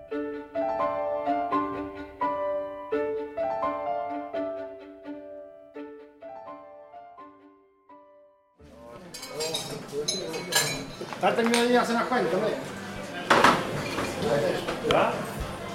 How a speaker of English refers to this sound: This is a bar and restaurant in southern Spain. It's a local favorite called Casa Pedro. About 20 ham legs hang on a wall behind the bar.